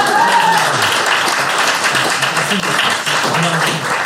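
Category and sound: crowd, round of applause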